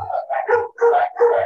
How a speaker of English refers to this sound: Are those the guard dogs in the jail that you're living in?